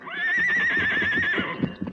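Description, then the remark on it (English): A horse named Silver neighs loudly in a long, wavering whinny that holds steady and then trails off, followed by a few soft thuds and shuffling sounds. “Your horse named Silver.”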